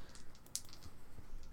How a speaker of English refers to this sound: and then immediately fling my dice all over the absolutely everywhere. That is a 13.